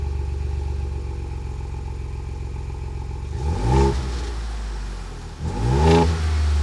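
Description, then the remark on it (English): A Ford Bronco engine idles with a deep exhaust rumble, then revs sharply twice, each throaty burst rising and falling, loud with no talking. “It sounds just like my Bronco. It sounds with like the new exhaust system.”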